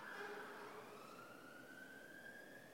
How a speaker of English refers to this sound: Just let the siren go past.